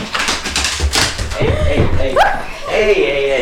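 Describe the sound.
A dog named Ace yips and whimpers in short, high-pitched bursts, with a few sharp slapping knocks early on and a person speaking over it.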